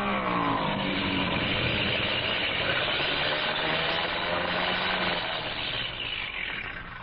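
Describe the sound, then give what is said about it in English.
An aircraft engine that has been acting up drones loudly as the plane comes in fast to land, its pitch wavering slightly, then easing off a little toward the end. No one speaks. “Engine's been acting up. I was afraid to trust it.”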